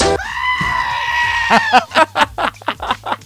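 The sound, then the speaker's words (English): A goat lets out one long, loud, strained scream that sounds almost human, then breaks into a rapid run of short, choppy, piercing bleats. “that's what a goat sounds like. That is the screaming goat of internet and YouTube fame”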